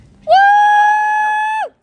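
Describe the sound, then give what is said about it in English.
A single loud, high-pitched cheering whoop from one voice, cheering after comedian Hannah Berner says she likes astrology, held steady at one pitch for over a second before dropping away at the end, with no talking. “And I cheered so loudly because I'm also into astrology, not cats, but I'm into astrology.”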